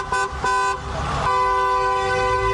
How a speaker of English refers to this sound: We're all going to drive by. We're getting 100 cars to honk and wave.